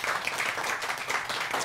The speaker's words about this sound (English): Round of applause to all of the answers. Thank you very much.